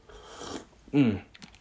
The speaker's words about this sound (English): Just a sip of the tea there.